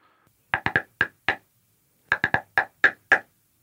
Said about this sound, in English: The knocks ring throughout the house, as though carried on magic winds.